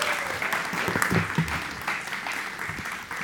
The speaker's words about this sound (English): And so why don't you guys give her a big, big, big round of applause as she comes today and shares with us.